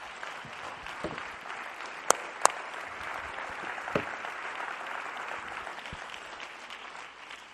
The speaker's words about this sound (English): You may be seated. Clap your hands when you're seated.